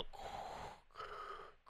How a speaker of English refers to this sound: The new trailer released goes through different clips from the first movie to now. In the background, you hear Darth Vader breathing.